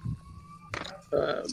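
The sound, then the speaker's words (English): A police siren passing outside holds a steady high wail in the background, partly covered by bursts of louder voices and noise partway through. “Shit, Popo. Right? Oh, you guys hear that?”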